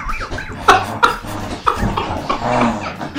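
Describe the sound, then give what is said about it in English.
A dog grunts and snorts while being lifted in a bicep curl, a few short strained bursts followed by a longer, rumbling huff, with no one speaking. “That's the noise of a dog being bicep curled.”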